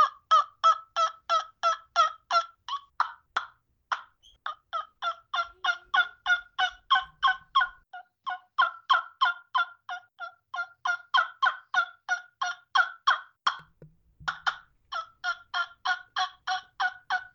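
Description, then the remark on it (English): A cane trumpet-style turkey call blown in a long, steady series of short, sharp yelps, evenly paced, with only brief pauses between bursts and no talking. “Yeah, this is my demo of the trumpet call.”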